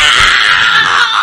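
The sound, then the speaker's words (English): A creature caught between two Geller fields screams: a harsh, shrill scream blares loud, held steady without a break for just over a second, with no voices alongside it. “And the creature just starts screaming out.”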